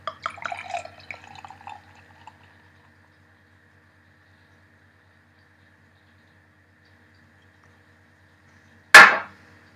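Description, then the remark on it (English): A 6% pale ale, aged 60 days in second-fill American oak Jameson casks, glugs and splashes out of a bottle for about two seconds, moderately loud, then quiet until a single sharp knock near the end, like glass set down. “Pour it in.”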